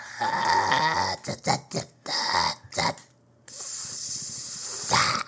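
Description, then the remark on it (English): A person imitates a snake, giving a sibilant sound: a long, steady hiss that runs for about two seconds, after a few short throaty bursts and breathy sounds at the start. “All right, well, sibilant is making a hissing sound. Sibilant. Like a snake.”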